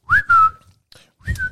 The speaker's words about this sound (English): Just the only instrument I've ever learned to play. The whistle.